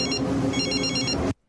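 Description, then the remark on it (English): A telephone rings with a rapid, trilling electronic bell, steady and loud for about a second before cutting off abruptly into silence. “You just assume you're making that bread, and you're at the combine when your phone rings, and it's the police saying, hey, yo, we've got two warrants out for you, bro.”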